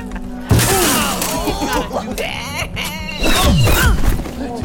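In the audio drama Marvel's Wastelanders, a concussion arrow strikes a head with a sudden loud crashing, shattering burst, followed by pained groaning voices and a second clattering crash a few seconds later.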